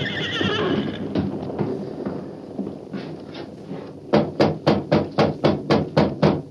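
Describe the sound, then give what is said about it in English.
A horse named Silver whinnies with a high, quavering neigh, followed by restless snorting and shuffling, then a steady run of about nine sharp hoof clops in an even rhythm. “Why are you so nervous? Take it easy, Silver.”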